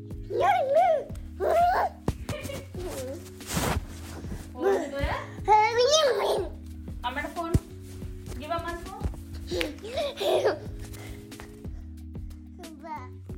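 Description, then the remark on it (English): A toddler boy babbles, squeals and whines in short bursts into a phone's microphone as he runs around carrying the phone, with occasional handling bumps and a steady low hum underneath. “Here he is running around with Savani's phone a few weeks ago when I had asked her to send me a test voice recording”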